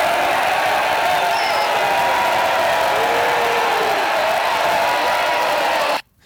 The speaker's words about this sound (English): What was that? So angry. Should, that's supposed to be crowd booing and heckling. I'm getting rid of that. That's sound. That sounded like shit.